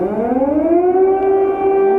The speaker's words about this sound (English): I'm on the phone with them 24/7. It's so sad to hear, like, hearing all those bombs and the sirens goes off.